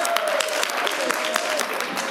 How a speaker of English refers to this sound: Are you clapping for not having been born? Is that what you're clapping?